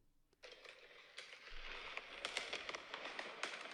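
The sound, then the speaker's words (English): Fireworks exploding on a street crackle and pop almost nonstop after a brief quiet start, dense overlapping bursts with a few sharper bangs standing out, fairly faint. “So this is just like on the street and you just like look in every direction. There's like fireworks.”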